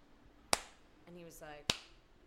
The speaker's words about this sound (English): I heard that Bono was once at a performance, and I think it had to do with the Save the Children from AIDS, and he started clapping like this.